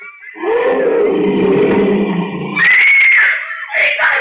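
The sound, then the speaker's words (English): A lion about a quarter of a mile away in the jungle lets out a loud, rough, drawn-out roar lasting a couple of seconds, quickly followed by shrill, high-pitched screeching cries. “They're just scared by the lion roar.”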